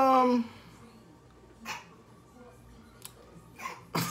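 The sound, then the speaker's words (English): A brief voice trails off, then after a few soft noisy bursts comes a sudden, sharp sneeze, loud and breathy, at the very end. “Bless you.”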